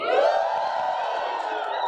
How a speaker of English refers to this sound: And Salt, can you just give everyone a shout-out? Salt, I want you to cheer. I'm going to place the mic towards you. Hopefully it's going to work. One, two, three.